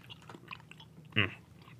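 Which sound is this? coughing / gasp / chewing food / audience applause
chewing food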